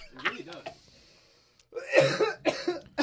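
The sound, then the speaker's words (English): A brief strained vocal sound, a short pause, then a burst of harsh, raspy coughs, three or four in quick succession, loud, like someone hacking to clear their throat after sipping a very sweet liqueur that tastes like cough syrup. “I got the black lung pop.”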